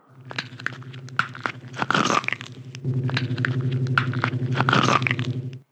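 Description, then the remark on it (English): Walnut shells inside a grapefruit rind crushed by hand, made as a neck-crunching sound effect for a movie, make a loud, wet crunching with a dense run of cracks and sharp snaps lasting several seconds, over a steady low hum. “It is walnut shells inside of a grapefruit rind and then crushed by his hand.”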